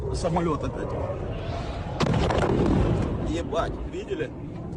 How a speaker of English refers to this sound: Pretty much just boom. And then a bunch of shrapnel smacking the car.